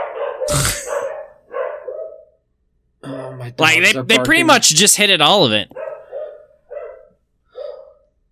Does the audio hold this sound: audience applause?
no